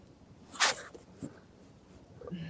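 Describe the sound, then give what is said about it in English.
A dog gives a sharp bark, followed by a softer yelp a moment later, with no one talking. “my dogs are causing a fit. They're not meeting expectations. That they are barking.”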